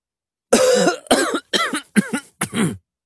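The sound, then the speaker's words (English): A person coughs five times in quick succession, harsh, with short gaps between each raspy burst and no talking around them. “I cough, cover my mouth.”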